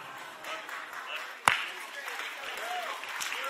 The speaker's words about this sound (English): I'm worried because I pay you to clap and you're the only one clapping.